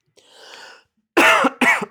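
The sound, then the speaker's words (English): A soft, breathy throat-clearing rasp is followed by two loud, harsh coughs in quick succession, with no talking. “Clear my throat with some Kingsville beer.”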